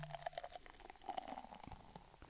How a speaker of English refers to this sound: All right, let's see if we can get the hazy IPA. Right, I'll pour a little taller pour so maybe let's get a little more sound going here, right?